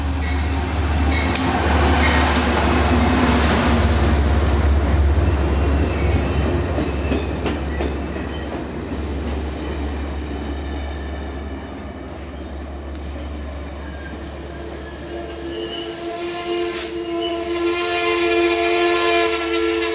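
A train rolls steadily through, its heavy low rumble filling the space while high metallic squeals and tones ring over it, swelling again toward the end. No voices.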